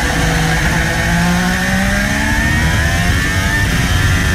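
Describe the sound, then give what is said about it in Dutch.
A Formula 1 car engine screams, heard from onboard during a race, pitch climbing steadily as it accelerates up through fifth, sixth and seventh gear, loud and continuous with no voices. “Op het geluid van Valtteri Bottas.”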